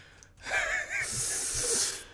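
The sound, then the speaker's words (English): A single sneeze: a short voiced intake of breath, then a loud, breathy, hissing burst that trails off over about a second, with no talking. “Bless you.”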